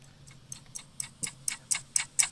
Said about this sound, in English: You're a ticking time bomb?